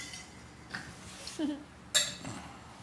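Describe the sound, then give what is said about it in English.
Ice clinks against glass in a few sharp, bright rattles, the loudest near the end, with a low murmur of voices and room noise underneath. “Cheers. Shake that ice.”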